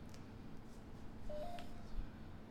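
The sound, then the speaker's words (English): A single short electronic beep from a ghost box, a steady mid-pitched tone that briefly steps up in pitch, with a mechanical voice saying "poison", over a constant low hum and static-like background noise. “And in that last little section, you heard a beep and you heard a mechanical voice say poison.”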